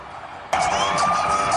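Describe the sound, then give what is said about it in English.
An ambulance siren suddenly cuts in, a steady high wailing tone that wavers up and down, over a loud rush of traffic noise as the ambulance speeds away at 120 miles an hour from Ben Affleck's Georgia estate, flanked by two security vehicles, rushing to the hospital. “An ambulance with sirens blaring speeds away at 120 miles an hour from Ben's Georgia estate, flanked by two security vehicles as it rushed to the hospital.”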